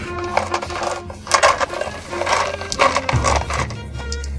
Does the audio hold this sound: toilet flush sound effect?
no